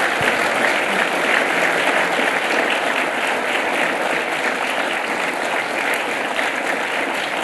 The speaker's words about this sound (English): Give an applause for yourself. You've been a terrific audience.